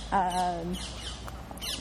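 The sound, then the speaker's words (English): A single loud, harsh squawking alarm call from a marmot in the mountains rings out for about half a second, followed by faint chirps and a quiet open-air background. “Things like backpack squeaking or birds around in the mountains, marmots. There's a lot of marmots in the Italian Alps.”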